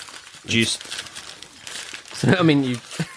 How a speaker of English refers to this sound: It's so that's a newspaper. That's the wrapping paper. That's the wrapping paper.